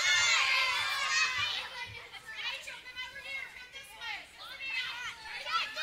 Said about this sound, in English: All right, you ready? Y'all start yelling. Go. Come on. Go ahead.